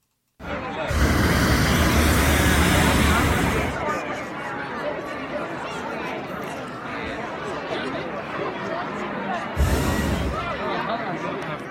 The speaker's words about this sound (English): That was them just putting little puffs of hot air into the balloon with that big whoosh sound. You know, if they want to go flying, they have to keep that on for a longer time.